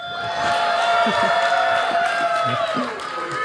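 A live audience reacts loudly all at once, a dense mix of cheering, whooping and drawn-out booing that holds steady for a few seconds.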